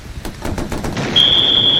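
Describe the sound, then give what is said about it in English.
A rapid, evenly spaced burst of machine-gun fire rattles for about a second, then a steady, piercing high-pitched tone sets in and holds over rumbling noise. “Still, some bullets will get them sooner or later.”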